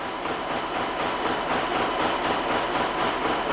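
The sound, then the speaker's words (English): A denim weaving loom in a workshop on the outskirts of Nimes bangs away weaving indigo denim from indigo and undyed warp and weft, in a fast, steady mechanical rhythm, about three clattering beats per second over a constant whirring drone, loud and unbroken, with no voices. “looks at the computer screen to check the progress of the loom that's banging out indigo denim here in his workshop.”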